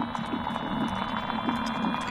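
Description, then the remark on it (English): Underwater aquatic invertebrates living at the bottom of murky undergrowth, such as water beetles and water scorpions, chirring and ticking in a dense, continuous chorus, with a steady high-pitched whine, scattered clicks and low pulsing bursts repeating roughly every half second. “The songs of these creatures are registering their acoustic presence to the world.”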